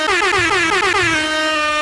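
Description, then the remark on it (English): A loud, sustained air horn blast, sounded between games, lasts nearly two seconds, its pitch wavering slightly before holding steady, with no talking over it. “We used to do like an air horn going between all the games.”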